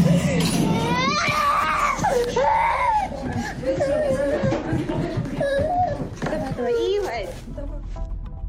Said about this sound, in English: A Russian jet, sort of on a bombing run, let go of a missile that hits nearby. And you hear a child scream.